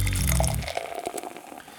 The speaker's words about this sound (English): So grab yourself a glass, pour yourself a beer, and get ready to hop forward in the brewing and beer business.